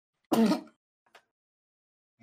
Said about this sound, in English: Bro, I'm sneezing, not coughing. Leave me.